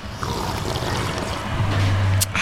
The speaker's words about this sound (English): Let's take a sip of coffee